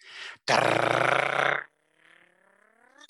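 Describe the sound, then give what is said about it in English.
A voice imitates a car's parking pawl grinding: a short raspy burst, then a loud, harsh, gritty rattle for about a second, fading into a faint, wavering tail. “surely you've been in a car that don't have park, and you've heard that distinct sound of it trying to grab the park paw.”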